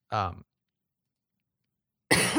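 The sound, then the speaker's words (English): Two loud coughs on camera separated by a long silent pause; the first is short and throaty with a voiced edge, the second a harsher, breathy burst. “Coughing on camera.”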